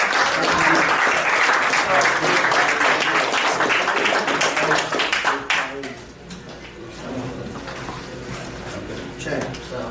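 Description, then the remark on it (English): A crowd bursts into loud, dense applause for a champion for about five seconds, then the clapping quickly dies away into quieter background noise with scattered voices murmuring. “Let's clap it up for the champ.”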